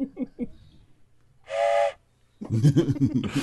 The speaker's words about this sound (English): Oh, there it is. Oh, no. Three. Three whistles.